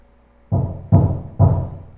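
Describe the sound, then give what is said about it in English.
Three heavy, booming knocks on a door, evenly spaced about half a second apart, loud with a deep thud and short ringing decay, no voices. “Because I want you to, when you think about it, when you hear that knock, when you hear fear bumping at your door, you say, okay, fear.”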